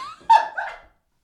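A dog lets out a quick pair of barks, the first sharper and the second trailing off, with nothing else audible around them.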